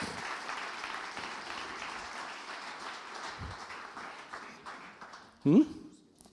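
A crowd applauds steadily with dense, crackling claps and a few cheers as guests are called up to be interviewed, then the clapping fades away; a single louder burst stands out near the end.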